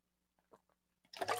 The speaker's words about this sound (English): Let me get a quick sip of water. Y'all like my cup? My son gave me this cup for Christmas.